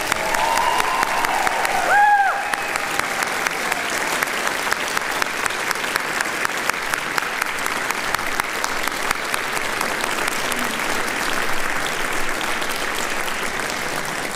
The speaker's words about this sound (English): One more round of applause for all of our seniors.